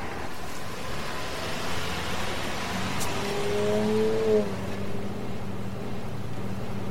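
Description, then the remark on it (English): A car engine roars steadily under a broad rushing noise, with a brief higher whine swelling in the middle as the car speeds hard toward a wooden fence with water beyond it. No voices. “Slow down. Stop. I tell you, let me out of this car.”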